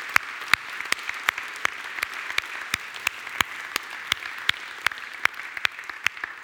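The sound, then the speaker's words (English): Steady audience applause: many hands clapping at once in a dense, crackling wash, with sharper individual claps popping out at a brisk, fairly even pace. No one speaks over it. “So can we just give everyone a big round of applause?”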